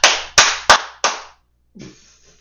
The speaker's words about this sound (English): We should have like a makeshift ass clap. Like, fucked up song of the week.